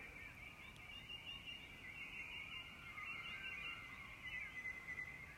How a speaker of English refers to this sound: I'm just having fun with the birds.